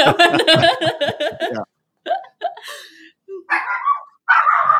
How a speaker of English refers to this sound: There's the dog. The dog obviously wants to get going somewhere.